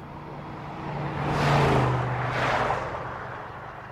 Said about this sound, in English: A pickup truck came down the highway and I jumped in the back.